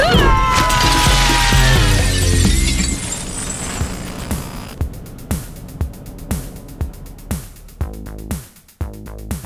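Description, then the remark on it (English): A battle dress crashes through the glass of a giant cylinder: a loud, sustained crash of shattering glass with ringing, screeching tones, then a quick series of sharp clattering hits as debris falls. No one speaks. “can your battle dress crash through this glass?”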